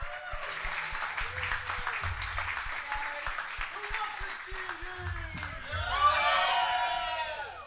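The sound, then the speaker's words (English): A crowd applauds loudly to welcome a music artist to the stage, with dense, steady clapping joined by cheers and high whoops that swell near the end. Voices shout over the continuous applause throughout. “Let's hear it for”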